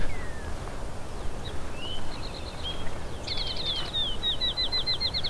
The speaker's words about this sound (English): Got a couple of eastern towhees here.